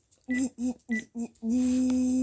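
Four quick telephone keypad dialing tones beep in a steady rhythm, followed by a longer continuous tone that holds to the end, fairly loud with no talking.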